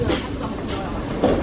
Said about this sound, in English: So I don't have a seat on the train yet. It's going to be about an hour, so I'm really hoping I get a seat soon.